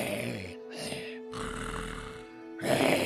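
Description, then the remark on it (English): A voice imitates a character's very loud, congested snore, from congestion in the lungs: several rough, gurgling snorts and grunts in bursts with short gaps, forceful, building to a harsher rasp at the end. “You hear a very, very loud snore from Leroz. He's clearly got some weird congestion going on in his lungs.”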